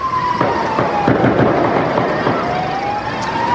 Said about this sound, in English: The sound of gunshots rang out and sirens blared in the streets of Liège. Officials say a prisoner out of jail on a temporary release stabbed two police women before stealing their guns and opening fire, killing both officers and a bystander.